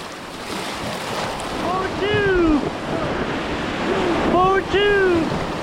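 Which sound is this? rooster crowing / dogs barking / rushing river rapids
rushing river rapids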